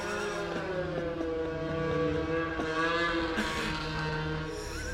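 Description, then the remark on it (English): Snowmobile engines drone steadily as the machines drive by, heard from a garage, a buzzing harmonic whine that shifts slightly in pitch as they go by, with no one talking. “Snowmobiles going by.”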